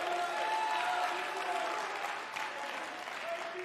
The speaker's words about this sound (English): Give God one more round of applause.